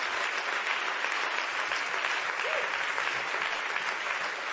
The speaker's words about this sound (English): I haven't even talked about it, but just because the word is so good, let's clap our hands for the word of God.